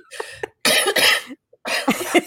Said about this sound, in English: No, I just got the uncomfortable cough.